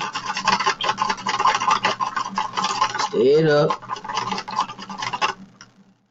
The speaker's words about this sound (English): So, then pour the juice in there, stir it up.